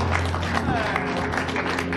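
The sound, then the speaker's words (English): An audience claps their hands for God in a dense, steady patter that runs through the whole clip, layered over a low sustained hum and murmuring voices. “Clap your hands for God.”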